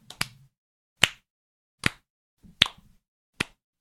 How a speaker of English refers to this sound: Can you join me in a little slow clap?